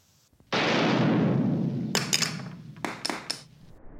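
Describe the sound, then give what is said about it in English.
A sudden loud shotgun blast bursts through a locked wooden door, its roar decaying slowly, followed by a scatter of sharp cracks and clatters as splintered wood falls and the lock drops to the floor. “A shotgun blast sent wood splintering into the room.”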